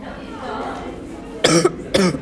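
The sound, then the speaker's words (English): Two harsh coughs in quick succession, about half a second apart, from a person who tried to laugh after vaping, following a stretch of faint, muffled voice-like murmuring in the background. “That's me coughing because I tried laughing while I hadn't nicotine in my mouth.”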